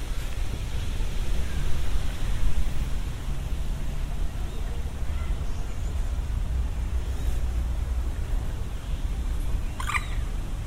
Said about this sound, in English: Ah, there we go, wind in the trees.